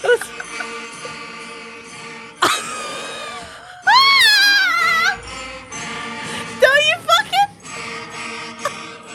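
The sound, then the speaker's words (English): A sixth grade beginner school band plays Jingle Bells, with sustained, slightly wobbly wind notes, a few shrill squeaky glides, and uneven bursts of louder playing. “Yeah, they played Jingle Bells.”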